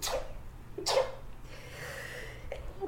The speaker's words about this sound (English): Like, sorry, I'm about to sneeze.